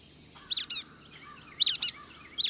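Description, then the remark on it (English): Brown-headed nuthatches foraging call in quick paired squeaky notes, repeated three times at moderate volume over a faint steady insect-like hum in the background. “The brown-headed nuthatches foraging here are tool users.”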